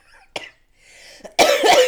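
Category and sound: human body sound, cough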